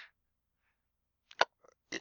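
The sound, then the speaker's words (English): A quick, fairly loud sneeze, with a sharp burst followed by a second short blast, set against an otherwise quiet background with no talking. “Bless you.”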